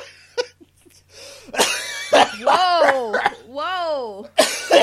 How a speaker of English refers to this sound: Whoa. That's a lot of coughing. A whole lot of coughing going on.